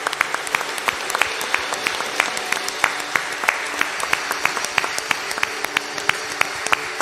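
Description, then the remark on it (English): An audience applauds for the people who stood up to declare their prayer, many hands clapping in a dense, sustained patter with sharp individual claps standing out throughout, no voices rising above it. “Let's give them a hand.”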